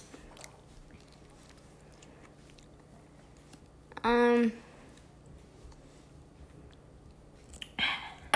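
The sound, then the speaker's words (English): A single loud, throaty gulp made while drinking water rings out for about half a second with a low humming tone, set against a quiet background, followed later by a brief rustling click. “I make that sound every time I drink water, just because of Dad, because he did it.”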